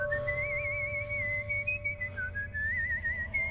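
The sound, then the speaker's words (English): A man whistles a wavering melody, the bright pitch sliding up and down in short phrases over a low steady hum; he is a dad reading the paper on a couch. “And the dad's reading the paper next to the girl on the couch, and he's whistling.”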